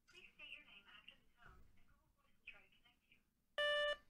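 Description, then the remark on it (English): A single short, loud electronic phone tone sounds near the end as a phone number is called, following a stretch of muffled voices and movement. “Just hand me the phone at this point.”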